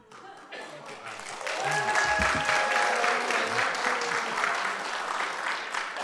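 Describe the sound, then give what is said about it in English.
A church audience bursts into applause before a scripture reading, a dense, steady patter of many hands clapping that swells quickly and holds for about six seconds, with faint murmuring voices mixed underneath. “Oh, well, when you applaud before, that's hope and faith.”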